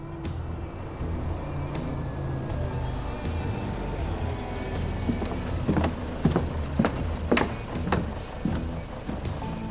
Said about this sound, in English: Looks like the gang's all here. Maybe 20 trucks, give or take, and one big armored one. They're all headed down towards the docks, probably gonna load up the freighter.